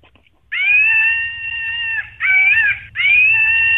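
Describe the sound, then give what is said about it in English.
A toy monkey lets out three loud, shrill screeches, the first long and steady, then a short warbling one and a final sustained cry, with a low mechanical buzz underneath. “It's a toy. Oh, it's not a real monkey.”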